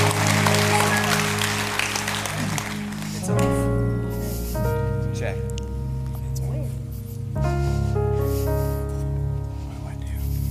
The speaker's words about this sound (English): Would you give them a big round of applause?